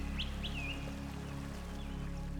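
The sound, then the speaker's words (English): A few short, high bird chirps rise over a steady low rush like flowing water, with a quick cluster near the start and fainter calls later on. “In the picturesque groves of ancient Thrace, the scent of blooming flowers filled the air, a natural symphony of chirping birds, rustling leaves, and distant flowing water setting a gentle rhythm.”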